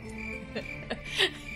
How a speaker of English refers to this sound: No, I'm putting crickets in there. Crickets go in there because I can't believe you're doing this again.